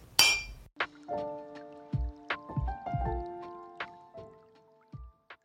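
Cups of hot coffee clink together in a toast, about eight bright ringing taps over a few seconds, each leaving a short resonant tone hanging. Fairly loud, with no voices.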